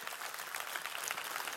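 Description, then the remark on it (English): A crowd gives a hand clap for Jesus, dense, steady clapping for a second and a half, a bright crackling wash of many hands at even loudness with no voices. “Give Jesus a hand clap if you believe that.”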